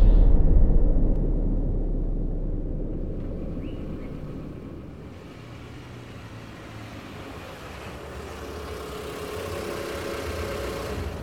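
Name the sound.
car engine driving away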